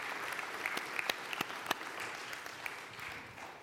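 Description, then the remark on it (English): An audience claps steadily for a Kenya team that has just shared an account, a dense patter of many hands with a few sharper, louder claps standing out, continuing without pause and with no talking over it. “Yes, you may clap.”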